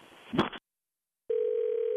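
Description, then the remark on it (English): A brief muffled clatter, a moment of silence, then a steady, unbroken telephone dial tone hums at a constant mid-low pitch to the end after a phone call about a turkey delivery disconnects. “Yeah, I think we were disconnected.”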